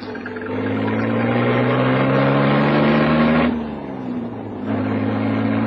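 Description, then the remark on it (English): A car engine hums and climbs in pitch as the vehicle pulls away, briefly dropping off mid-way as if changing gear before picking up again. No one speaks. “You picked the right car. Hop in.”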